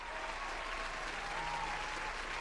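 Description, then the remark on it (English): Steady applause from a group fills the whole stretch, a dense, even wash of clapping with no pauses and no voices rising above it. “Round of applause to head.”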